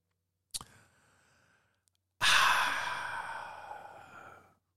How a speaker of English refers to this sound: So, sip of rum, Stone Cold Steve Austin.